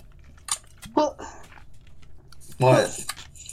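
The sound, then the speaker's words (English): Muffled bumps, clicks and scraping as a man tries to plug in and handle his microphone, in irregular bursts over a few seconds, with brief snatches of voice mixed in. “As he tries to put in his mic.”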